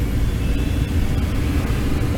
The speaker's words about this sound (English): You guys have to see this traffic. I'm gonna turn this camera so that you can see. Well, actually I can't turn it, so I'm gonna have to show you. It's not working. Check out the traffic.